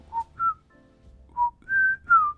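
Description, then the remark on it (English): A person whistles the theme from the film The Great Escape, a short, jaunty march-like tune in two quick phrases of clear, bright notes, fairly loud with no talking. “The Great Escape one is the one with, like, the whistling.”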